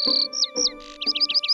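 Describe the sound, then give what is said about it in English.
A bird in a tree chirps: a few long whistled notes, then a quick run of five or six short, bright tweets in a lively rhythm, with no one talking. “Oh, hello, bird. How are you?”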